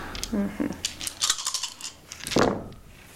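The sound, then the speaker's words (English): Dice are rolled during a tabletop game, clattering across a hard surface in a quick burst of sharp, rattling clicks that settle within a second, with brief murmured voices before and after. “Dice.”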